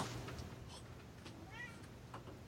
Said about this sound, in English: Sounds a lot like a cat.